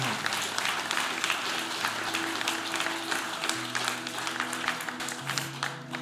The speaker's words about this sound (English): Yeah, you can clap for that.